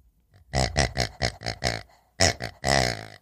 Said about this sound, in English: And you'll get this green pig. Farty. That farts. A farty pig.